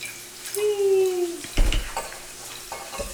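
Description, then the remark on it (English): A pale wine, between an amber and an orange wine in colour, the Vendemina 2012 Coenibium made by Trappist nuns, pours into a glass for about a second, making a gurgling, ringing tone that slowly shifts in pitch, followed by a sharp clunk and some faint clinking and rustling. “Because it was very pale, like this next one here. That I'm pouring.”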